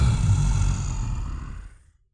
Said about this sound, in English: Then you hear a roar.